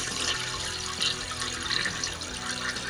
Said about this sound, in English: It did sound like it. That sounded like a toilet. It's a toilet flushing.